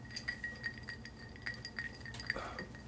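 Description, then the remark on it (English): Ice clinking against the side of a glass of Wild Turkey on the rocks, a string of light, bright taps in an irregular rhythm, fairly quiet, with no talking. “Yeah, so Wild Turkey on the rocks.”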